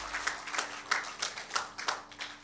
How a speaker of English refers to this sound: Good. Can we give him another hand clap of praise? Amen.